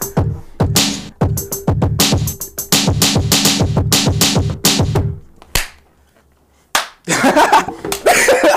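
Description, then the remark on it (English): Sharp hand claps ring out in a quick, uneven rhythm for about five seconds over a low steady hum, then stop; after a short silence, a burst of rough noise and chatter follows. “Real claps in.”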